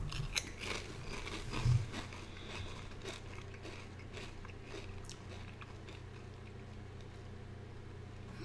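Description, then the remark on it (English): Someone chews a mouthful of crunchy rotisserie chicken flavored Pringles potato chips, with a steady run of crisp, crackling crunches at a moderate volume and no talking, opening with a few sharper bites. “Rotisserie chicken Pringles.”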